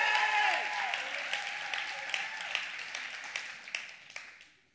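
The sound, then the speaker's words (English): An audience at a church gathering claps together in a dense, steady wash of applause, a few sharper individual claps standing out, before it gradually thins and fades away near the end. “But they'll probably clap for you later today.”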